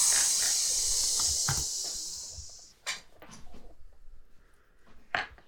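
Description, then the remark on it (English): A loud, steady sizzling hiss of water evaporating runs for about three seconds, then cuts off, leaving a few scattered pops and crackles. “It sizzles.”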